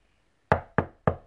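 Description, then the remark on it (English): Three firm knocks on a door in quick, even succession, each a solid thud with a short resonant decay, with no voices or other noise around them. “Knock, knock, knock. Never at quiet.”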